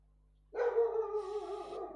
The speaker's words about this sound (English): The dog is very, very, very angry sounding. That dog could jump the fence and deck me.